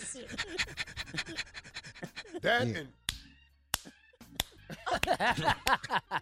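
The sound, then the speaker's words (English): A dog pants rapidly in quick, rhythmic breaths, broken by a few sharp slapping clicks, with a voice briefly heard in the middle. “It's a dog pack. It's a dog, but like I said, what is she doing?”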